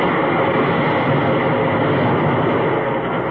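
A loud, steady roar of a train rushing past through a station, a dense rumbling wash of wheels and carriages that holds constant throughout, with no voices.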